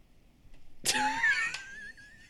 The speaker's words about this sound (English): I had a big yawn.